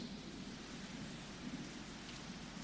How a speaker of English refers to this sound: The rain comes with freshness and what? Calmness.